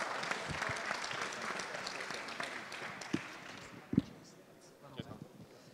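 An audience applauds after a performance in a steady, dense wash of clapping that gradually thins out, with a few sharper individual claps and thumps near the end.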